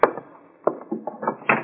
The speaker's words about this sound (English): All right, open the door. Let's see who it is.